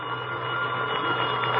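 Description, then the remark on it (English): A telephone bell rings in one continuous, harsh metallic trill, steady and fairly loud throughout, with no voices over it. “That's not the same bell. It's a telephone.”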